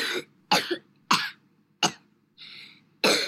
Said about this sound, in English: I also have a coughing track in case I was supposed to talk about that when I was at the doctor. Here's my cough track though.